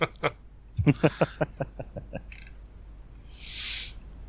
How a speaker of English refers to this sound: Is that your bird just laughing about that situation then